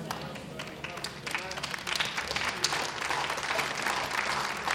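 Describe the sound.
A crowd claps steadily, the applause building quickly into a dense, even patter that holds at a moderate level throughout, with scattered voices mixed in underneath.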